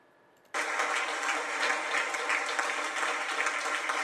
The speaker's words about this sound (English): They're all smiling and clapping.